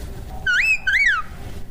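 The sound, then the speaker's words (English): A clear human wolf whistle used as a dog-handling command in two parts: a quick upward sweep meaning away, a brief gap, then a second note meaning come by that rises and glides back down. No one is talking. “Come after the wolf whistle, like you're whistling at a pretty girl.”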